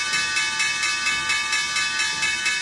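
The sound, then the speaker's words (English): A stock exchange opening bell rings continuously, a bright, high metallic tone pulsing in quick, even strokes at a steady loud level, with no voices over it. “Guys, there's the opening bell.”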